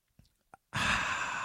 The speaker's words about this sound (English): Beer of the day. I'm drinking all by myself. It's probably a first sign of a problem. Here's the sip.